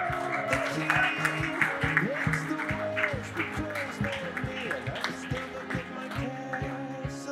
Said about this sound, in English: Sorry, but huge round of applause for this panel, please.